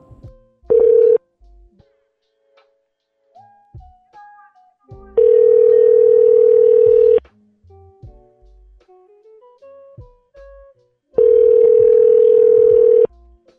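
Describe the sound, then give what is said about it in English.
A loud, steady electronic telephone tone sounds in three bursts as a call is placed, the last two about two seconds long, with quieter gaps holding faint short beeps between them. No one speaks. “Let me just call it.”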